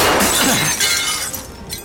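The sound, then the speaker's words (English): Window glass shatters loudly, a bright burst of breaking shards that keeps crackling and tinkling as debris scatters and settles over the next second or so. “He landed hard, spraying glass and wood onto his face and body.”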